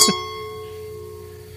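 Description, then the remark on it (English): Wine glasses clink together once in a toast, a bright tap followed by a clear ringing tone that hangs and slowly fades. “Cheers. Cheers to that.”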